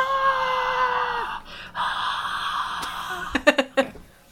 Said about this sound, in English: And the crowd goes wild.